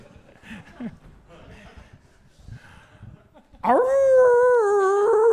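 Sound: wolf howling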